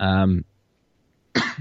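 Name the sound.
cough and throat clearing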